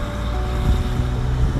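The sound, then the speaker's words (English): A heavy truck rumbles past outdoors, its deep engine drone steady and loud for the whole stretch, mixed with gusty wind noise and no voices. “Let this truck pass.”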